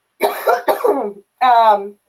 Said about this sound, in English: I feel weird because I feel like I have to justify that every time I cough. Every time someone sneezes, it's like. Even when I was on my telehealth visit today, I was starting to cough. I was like, I swear it's pollen. Just pollen.